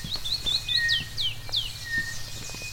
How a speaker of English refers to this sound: I have a switch in front of me now. A button that summons birds. Here they come.